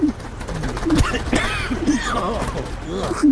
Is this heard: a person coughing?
no